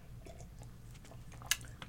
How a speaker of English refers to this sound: And we sip.